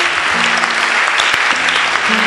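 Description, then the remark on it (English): A large audience in a church claps steadily and loudly for a couple of seconds, a dense, continuous wash of applause from many hands with a faint low hum underneath. “Oh, your clapping is not...”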